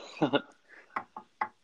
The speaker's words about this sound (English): Yes, yeah, wood. Wood, knocking.